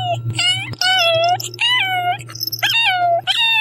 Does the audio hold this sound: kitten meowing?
yes